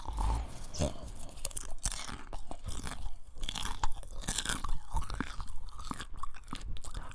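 Crunchy popcorn being chewed with a steady run of sharp, crackly bites and wet mouth sounds, continuous and fairly loud, with no talking.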